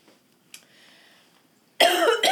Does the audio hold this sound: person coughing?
yes